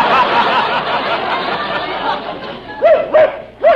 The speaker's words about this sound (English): Listen, Norman, you've got to stop bringing that dog to the studio now. Every week you bring him down here, you keep him in my dressing room,